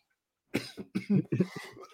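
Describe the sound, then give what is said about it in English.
A run of harsh coughs in quick succession from a person with a lingering 100-day cough, several bursts over about a second and a half, ending with another sharp cough. No talking. “Sit here and listen to me cough all podcast.”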